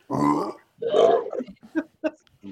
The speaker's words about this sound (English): Let's out a loud belch.